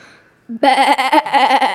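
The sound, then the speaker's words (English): A person imitates a sheep with a loud, wavering nasal bleat lasting just over a second, after a brief faint moment at the start. “what is your sheep noise?”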